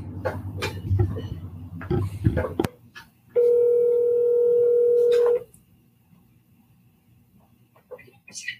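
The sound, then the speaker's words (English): A single steady electronic ringback tone from an outgoing phone call to the caller's mother sounds for about two seconds, loud and clear, after some muffled rustling and faint voices, then near silence follows. “Tell me if you can hear it ringing.”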